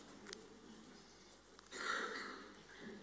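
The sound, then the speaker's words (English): A single soft sneeze during a presentation of biblical studies certificates, a brief breathy burst of hiss that rises suddenly and fades within about half a second over a low, steady background murmur. “Bless you.”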